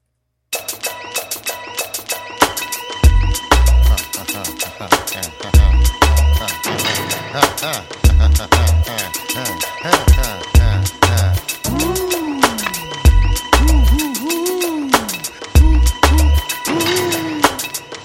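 A song with steady pinging, metallic-sounding clicks over thumping bass beats, later joined by slow, swooping siren-like tones that rise and fall repeatedly. No voices.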